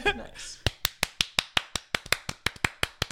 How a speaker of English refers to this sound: And then the biggest thank you, if I could get a clap for this one, for my mother. Thank you, Mom, my only sponsor.